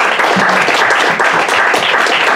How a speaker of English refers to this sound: Well, with that, please join me in giving a round of applause, a very warm one,